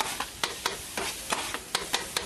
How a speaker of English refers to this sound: So we hear some of the sounds around his neighborhood as there's a street vendor grilling chicken.